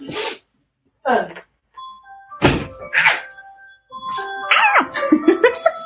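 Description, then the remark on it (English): A phone alarm set for 12:30 goes off, ringing a sequence of steady, high electronic chime tones that ring on and overlap, mixed with short bursts of voice and a thump. “My phone alarm is going off.”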